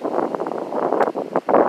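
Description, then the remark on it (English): Steady outdoor wind buffets the microphone with a rough, continuous rush, swelling in a few brief gusts over a couple of seconds, with no one speaking. “Hey, it's kind of windy out here.”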